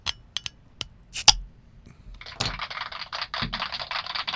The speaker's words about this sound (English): That one deserved a round of applause. A round of tinny little machine-made applause. So, you know, the lo-fi aspect of that actually adds to how awesome it is.